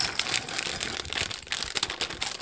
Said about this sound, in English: So the first thing I'm going to do is put 10 ounces of my chocolate chunks into a bowl.